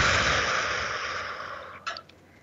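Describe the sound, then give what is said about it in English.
A long, breathy exhale through the mouth as part of a breathing technique of breathing in through the nose and out through the mouth. It is fairly loud at first and slowly fades over about two seconds, followed by a few faint mouth clicks. No one speaks. “So one way to give yourself a timeout is, right, do that breathing technique. And through your nose, extend out through your mouth.”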